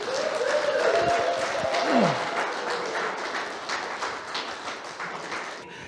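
A crowd applauds warmly for a speaker who has just been introduced: dense, steady clapping that holds for about six seconds, with a brief whooping cheer rising and falling over it near the start.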